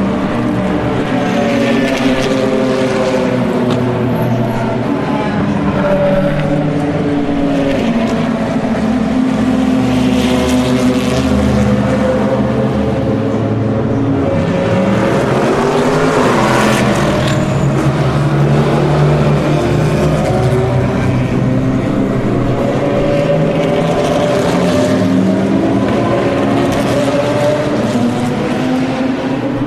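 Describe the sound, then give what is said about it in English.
Loud racing engines roar continuously as several race cars pass along the start-finish straight, weaving to keep their tyres warm, their pitch rising and falling as they sweep past, overlapping whines filling the whole stretch without any talking. “As they go by on the start-finish straight, they wiggle, of course, to keep the tyres warm.”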